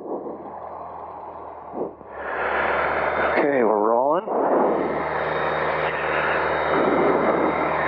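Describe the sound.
A small single-engine Cherokee propeller airplane's engine drones loudly and steadily as it takes off from runway 24 at Payson, swelling in power after a couple of seconds, with a brief radio-like voice cutting through the roar midway.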